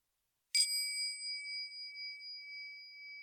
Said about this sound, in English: Well, we could maybe ring the doorbell and see if the baker answers, and perhaps he'll tell us why he ran out of flour.